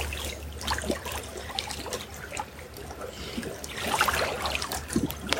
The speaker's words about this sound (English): Rains are coming now.